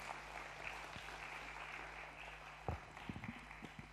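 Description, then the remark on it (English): A church audience applauds two guests after a prayer of blessing for them, a dense steady wash of many hands clapping at moderate volume, with a few sharper individual claps standing out toward the end. “Give them a wee round of applause.”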